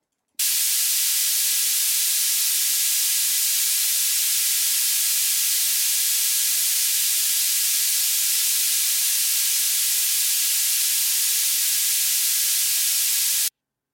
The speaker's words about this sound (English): That was just white noise.